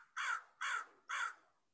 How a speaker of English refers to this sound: The crow agrees. I stand. Yeah, no, there's going to be a lot of fake birds up in this episode.